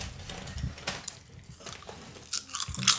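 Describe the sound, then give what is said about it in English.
Crunchy chewing with repeated wet, crackling bites in an irregular rhythm, fairly quiet overall with a few louder crunches near the end and no talking. “You're still chewing.”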